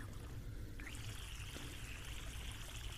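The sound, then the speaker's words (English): Water runs steadily from a faucet and splashes onto hair over a sink as bleach is rinsed out, a continuous hiss with a brief shift in flow near the start and no talking. “To start my water and wash your hair real quick. Alright, so here goes the water.”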